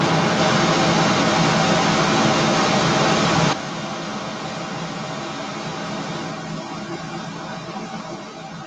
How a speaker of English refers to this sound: So what I'm going to do, I've got a microphone just standing next to me is a static microphone. And I'm just going to play some pink noise.